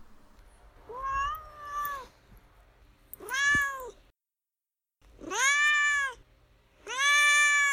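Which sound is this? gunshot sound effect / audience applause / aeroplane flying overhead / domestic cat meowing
domestic cat meowing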